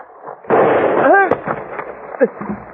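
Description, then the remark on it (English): A single loud gunshot among trees in late afternoon bursts out sharply and trails into a rough, rumbling wash of noise, with a brief voiced cry from the man shot in the thigh rising over it and a few fainter cracks afterward. “The bullet had slammed into the fleshy part of my thigh and passed clear through.”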